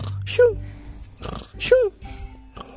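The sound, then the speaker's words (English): A voice imitates snoring twice, each a loud, rough snort with a brief pitched, wavering tone, separated by a short pause. “Some people snore like this.”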